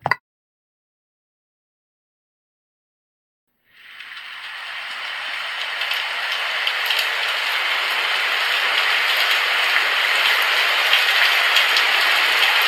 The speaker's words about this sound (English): Oh, wow, storm. I like storms.